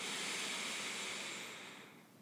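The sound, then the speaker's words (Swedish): A slow, steady breath drawn in through the nose during a breathing exercise, airy and hissing and alone, gradually tapering off toward the end. “En sista gång, andas in.”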